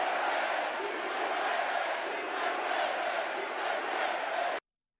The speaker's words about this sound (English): Hecklers are out in the audience. They're getting booed. There you go.